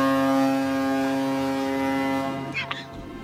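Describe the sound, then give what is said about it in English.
A loud, steady foghorn blast holds one deep, buzzy note for about two and a half seconds, then cuts off, leaving brief muffled sounds behind it. “Keep playing play the foghorn again.”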